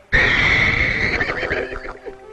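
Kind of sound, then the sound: animal, horse neighing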